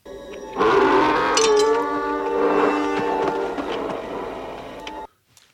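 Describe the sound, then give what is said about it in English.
A loud, wavering, harmonic cry of sand people, played as a film sound for a quiz question, a braying, howling call sustained for about four seconds before cutting off abruptly, with no talking over it. “Oh, sand people, yeah, sand people.”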